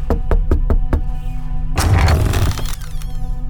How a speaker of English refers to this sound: But now, a knocking at the door was heard.